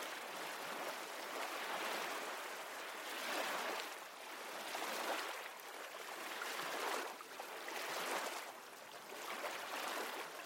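Steady ocean surf washes in broad, rolling swells, each wave rising and receding every couple of seconds in a continuous, full-bodied hiss with no voices.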